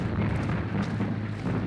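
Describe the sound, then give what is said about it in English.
A salvo of 5.9 artillery shells exploding on either side of a track merges into a loud, continuous rumbling roar, a dense low thunder with no clearly separate blasts and no voices, steady in level throughout. “A salvo of 5.9s crashes down either side of the track.”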